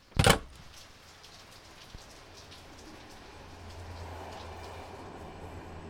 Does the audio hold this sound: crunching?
no